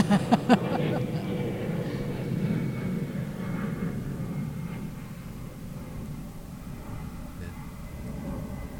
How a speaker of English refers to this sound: And then I know, the plane. Another UPS. Just hang on a second. I'm going to get pictures of the plane.